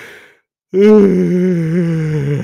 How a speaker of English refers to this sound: like right now I'm all fucking already like getting ready for like my yawning and shit, and yeah, I'm already getting ready, like, oh man, I gotta go to bed